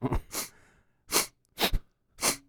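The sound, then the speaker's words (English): A series of short, sharp nasal sniffs from a Supreme Court nominee at a Senate confirmation hearing, about four of them at uneven intervals, fairly loud, with no talking in between. “The sniff gets it for me.”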